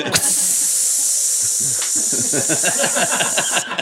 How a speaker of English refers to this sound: Jeez. Fuck, that's a fizzy Guinness.